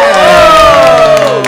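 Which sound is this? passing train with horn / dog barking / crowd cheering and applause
crowd cheering and applause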